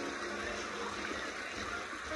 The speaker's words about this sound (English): We're going to be indoors. But it, it kind of tricks you because it sounds like a wave pool. So, don't be alarmed if it sounds like we're on the beach at like a water park or something.